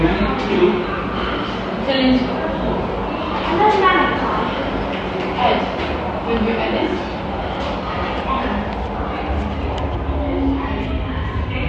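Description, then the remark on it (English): A train pulls into a station with a steady, loud mechanical roar and low rumble that swells slightly, with scattered voices murmuring in the background. “Here comes a train now.”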